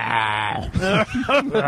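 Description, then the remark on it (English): A person imitates a raven's call, a harsh, nasal croak that starts with a long strained note and breaks into a few shorter, rising caws, fairly loud and with no other sounds. “That was a great raven.”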